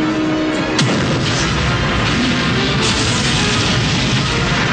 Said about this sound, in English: Listen to all those explosions.